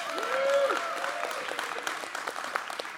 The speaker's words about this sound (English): Well, good morning. I want to, you can clap